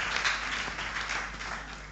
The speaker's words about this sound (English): Ladies and gentlemen, please a round of applause for Professor